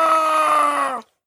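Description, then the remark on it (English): A person lets out a single loud, screechy pterodactyl-like scream, holding a steady, harsh, strongly tonal pitch for about a second before cutting off abruptly. “Screamed like a pterodactyl.”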